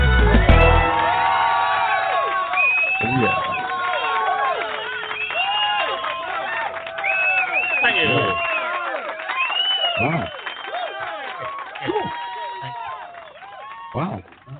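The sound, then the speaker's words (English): A large crowd cheers and shouts continuously, with whoops and overlapping voices rising and falling in a lively, sustained roar. “What a crowd.”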